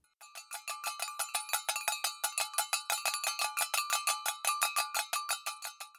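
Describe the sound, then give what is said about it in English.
A huanjiao niang, a street vendor's noisemaker used by a seller of women's cosmetics and makeup, rattled in a fast, steady stream of bright, ringing metallic clinks for several seconds with no voices. “Oh, that's a huanjiao niang. That's for women's makeup. That's someone for selling women's cosmetics.”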